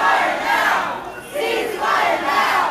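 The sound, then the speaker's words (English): A large crowd of protesters calling for an end to the war in Gaza chants loudly in unison at a party convention in Sacramento, interrupting speeches by Congress members Adam Schiff and Katie Porter, repeating a shouted phrase in three rhythmic bursts with brief dips between them. “Moments later, those chants turned into cheers for Congresswoman Barbara Lee, who supports a ceasefire.”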